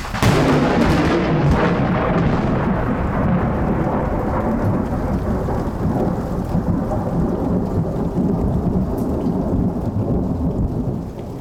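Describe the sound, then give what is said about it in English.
A thunderstorm on the 4th of July in Boise, Idaho, with a heavy, rolling crack of thunder near the start that rumbles on over steady rain, the low roar gradually fading while rain keeps hissing throughout. “I hand-recorded this thunderstorm on the 4th of July in Boise, Idaho, that upstaged a fireworks display by igniting several fires and destroying a million-dollar home.”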